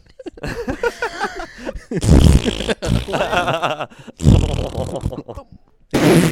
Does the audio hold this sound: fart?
yes